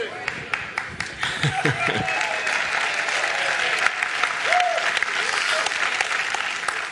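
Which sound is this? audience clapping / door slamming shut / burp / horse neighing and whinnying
audience clapping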